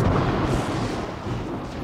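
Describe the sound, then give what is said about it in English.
A loud, deep rumble of thunder rolls on steadily for a couple of seconds, broad and booming with no clear break, and no voices are heard. “Suddenly, there's a loud crack of thunder.”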